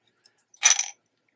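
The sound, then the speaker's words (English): A quick jingle of two silver coins clinking together as they are given to an inn owner, fairly crisp, lasting under half a second, preceded by a couple of faint small ticks. No one speaks. “So before he left the inn, he gave the owner 2 silver coins.”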